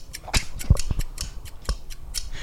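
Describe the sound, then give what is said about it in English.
Fudge scissors cut through hardened fudge, about eight or nine crisp cuts in quick, slightly uneven succession, each a sharp metallic click-crunch. No voices. “Some of the fudge has hardened and I need to cut it.”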